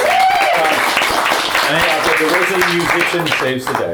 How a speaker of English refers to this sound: we should give a round of applause.